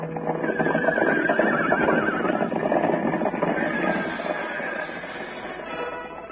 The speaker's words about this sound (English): Now toward the ranch house comes another horse. This one wears a saddle, but no rider. He runs free, his bridle whipping about his head.